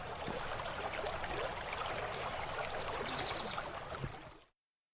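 Steady rushing and burbling of a stream flowing to the sea on the Gower, a dense continuous wash of water noise with small splashes, holding even for several seconds before cutting off abruptly.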